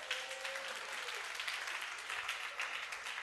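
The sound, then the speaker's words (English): An audience applauds, a dense, steady patter of many hands clapping at once that holds an even, moderate level for a few seconds with no one speaking over it. “I thought you are going to clap.”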